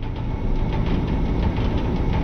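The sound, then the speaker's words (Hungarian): A small electric fan runs steadily, giving a continuous low whirring hum with a soft airy hiss on top. The drone stays even throughout, with no voices. “Mondjuk ez a, ez a kis ventilátor, bekapcsolás, egyéb hangok, hát most nehezen tudnám kiszólózni az összes sávot, de ha csak külön dialóg nélkül akarom nézni, akkor van egy ilyen ventilátorsáv, meg van egy ilyen.”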